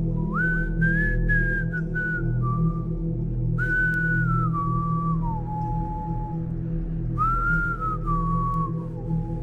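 Loud whistling beside a person on a staircase in the afternoon carries a slow, wavering melody like a very old English tune, in three drawn-out phrases with short pauses between them, over a steady low rumbling background.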